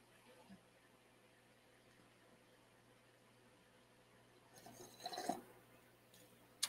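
After several seconds of near-silence, a single brief slurp of hot coffee, quiet but distinct, followed by a small click at the very end.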